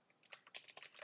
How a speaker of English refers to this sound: I'm typing.